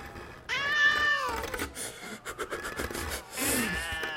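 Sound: cat meowing and yowling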